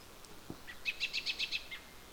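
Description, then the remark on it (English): A bird sings a quick run of about six bright, high-pitched chirps in an even rhythm, preceded by a couple of softer notes, over a faint, steady outdoor hiss, in a typical rural midday soundscape of Lount Township, South River area, Central Ontario. “Right now, you're listening to the soundscape of Lount Township, which is in the South River area of Central Ontario.”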